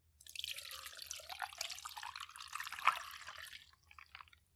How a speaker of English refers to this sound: And now you're going to pour all ingredients into a shaker filled with ice and shake 40 times.